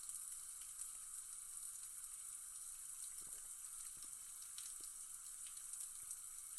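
Shower water runs steadily in a continuous, hissing spray with a few faint knocks and splashes underneath, fairly quiet and with no voices.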